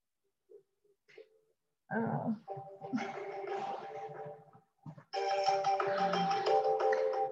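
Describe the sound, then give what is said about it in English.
A mobile phone ringtone plays loudly, a bright electronic melody with steady stacked tones, pausing briefly before resuming even louder, preceded by a few faint soft noises. “Sorry, forgot to turn off the phone.”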